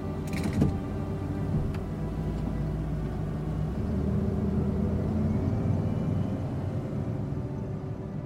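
A single sharp thud like a car door shutting, followed by a steady low engine rumble as a car pulls away and keeps driving through a gate, with faint mechanical creaks. No voices.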